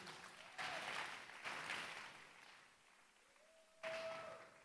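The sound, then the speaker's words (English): An audience claps in a dense, crackling wash that swells in three waves, with a faint sustained tone lingering underneath near the end. “You're clapping.”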